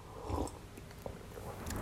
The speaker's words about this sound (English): Took a sip of my tea.